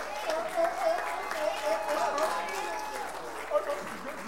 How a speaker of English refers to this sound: Applause for our witness missions trip team.